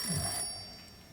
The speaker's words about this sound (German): Das Telefon klingelt, Liebling. Gehst du?